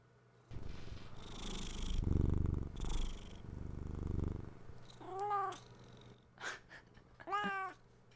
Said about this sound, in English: I remember when Oscar was skinny and he you could hear him purr from a distance. Now you have to have like a fucking stethoscope.